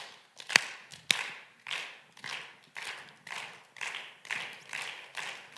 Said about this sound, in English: Wow. You can stop. I did not expect that. I thought you guys were ratchet. You're all going to stop clapping after I stop clapping.